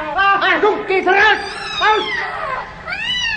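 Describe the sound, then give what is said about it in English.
An angry female cat yowls and screeches while attacking a man and clawing his face, in a run of loud, wavering cries that swoop up and down in pitch, one after another for a few seconds, with no talking. “The cat's claws found one of his eyes, and I actually saw her tear through it and down his cheek, leaving wide bands of red where the blood seemed to spurt from every vein.”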